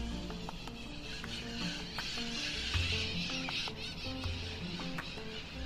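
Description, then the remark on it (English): A busy chorus of bright green parrots squawks and chatters outdoors, the calls overlapping continuously, with sharp bursts and clicks rising over a steady, rustling background. “Those are parrots, people.”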